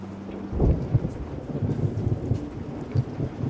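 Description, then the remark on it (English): A thunderstorm with a low, rolling rumble of thunder swelling early on, over a steady wash of rain pattering against windows, no voices present. “Rain rapping on windows has got to be the number 4 most soothing sound.”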